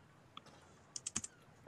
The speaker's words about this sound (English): who's typing? Sorry, that's me. Okay, I'm sorry. That was aggressive. Do I really type that loud? It's pretty loud. It is kind of.